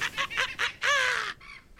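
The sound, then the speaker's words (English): A rooster-like crowing call of fantasy velociraptors from the forest in the morning: four quick harsh notes, then one long, drawn-out cry that slides slightly downward, followed by a fainter echoing tail. Loud, with no talking. “Okay, so morning comes and the roosters, well, the velociraptors crow from the from the forest.”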